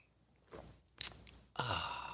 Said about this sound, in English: I like coffee. And join me now for the unparalleled pleasure, the dopamine hit of the day, the thing that makes everything better. It's called the simultaneous sip.